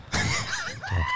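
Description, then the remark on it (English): A loud goat bleat: one wavering, quavering cry that rises and falls, followed by a shorter second bleat, with no talking. “You do have the goat sound on there.”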